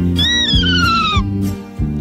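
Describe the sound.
A child's voice imitates a horse's neigh: one high, wavering cry that slides downward for about a second, over a steady low droning hum.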